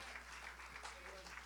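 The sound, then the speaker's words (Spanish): An audience applauds for the Lord with a steady, dense wash of many hands clapping throughout, fairly soft and even in level, with a voice faintly rising through it. “Y si ese aplauso es para el Señor, yo quiero que la congregación completa le dé ese aplauso fuerte al que se merece toda nuestra honra y toda nuestra gloria.”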